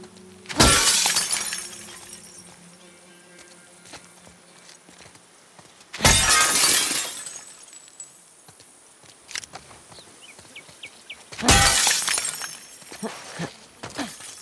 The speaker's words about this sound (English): So the windows themselves need to shatter, and the sound design process there and the guidance to Jesse was, it needs to sound tonal, right? Big panes of glass have a tone to them when you hit them, and that's part of the satisfying like thunk of it.